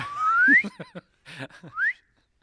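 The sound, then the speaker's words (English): Two quick upward-sliding whistle glides, like a slide whistle, apparently whistled by mouth in imitation, separated by a few short, clipped vocal noises, fairly loud. “The soundtrack will just be feature a lot of slide whistles.”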